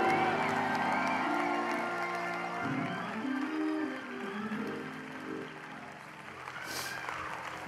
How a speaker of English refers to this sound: Take 15 seconds and clap your hands and give the Lord a mighty shout. Come on, give Jesus a mighty shout.